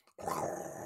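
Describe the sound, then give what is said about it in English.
A real tiger on a film set growls, bursting in after a brief silence and holding as a loud, rough snarl for the rest of the moment, with no voices. “leaning against a tree, because there is a tiger!”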